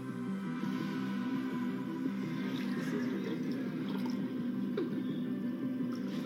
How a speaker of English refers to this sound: I can also pour drinks from my head. I fucked it up the first time, but yeah, is this real?